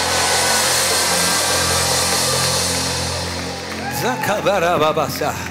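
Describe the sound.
A loud, dense roar of an audience during a sermon fills the first few seconds, then individual voices break out in high, rising and falling screams and shouts near the end.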